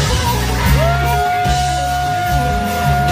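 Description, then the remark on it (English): A crowd cheers and yells in a steady, loud wash of noise as a guitarist chugs from a bottle while playing at a concert, mixed with music that carries a long sustained tone sliding up and holding over a low, pulsing bass. “The crowd's going crazy.”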